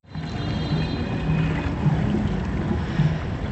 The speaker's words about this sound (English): But we set sail. Here's how we got on.